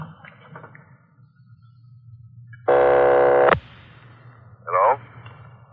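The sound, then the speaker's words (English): A telephone line rings once on a call from Los Angeles to Napa, with a loud, buzzing tone lasting under a second over a low background hum, followed by a short, fainter warbling burst. “Keep ringing, 761. They're ringing the number”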